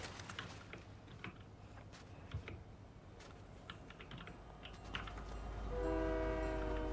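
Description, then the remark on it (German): Rapid keyboard clicking fills the first few seconds, then a train approaches with a deep rumble and a loud, sustained horn blaring over the final seconds. “Ja, Zug, dich juckt auch keiner ehrlich, also.”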